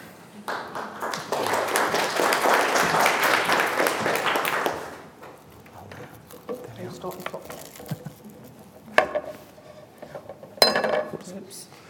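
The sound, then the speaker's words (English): Applause fades, then a glass on a table is bumped and nearly knocked over, with two sharp clinks and rattles a second or so apart. “I was so busy trying to avoid the iPad that I nearly knocked the glass over.”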